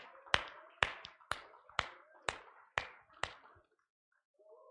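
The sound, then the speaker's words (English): An audience claps hands for the Lord in a steady unison rhythm as people make their way back to their seats, seven sharp, loud claps about two per second, each ringing out briefly before the next, then a pause with a faint murmur. “All right, let's give the Lord another hand clap while you make your way back to your seats.”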